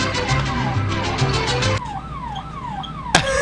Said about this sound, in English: We turn off the alarm!